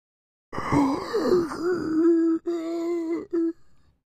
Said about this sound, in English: You all just sort of hear this breath echo through the room.